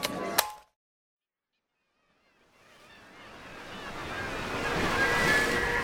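After a short burst of noise and a moment of silence, the roar of sea surf swells steadily louder, a wave rushing and breaking on shore, full, with wind mixed in.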